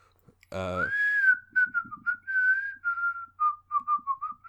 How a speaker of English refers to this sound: That's the calling card. That's the tell. Because this master of disguise compulsively whistles the same song in every single disguise he's in.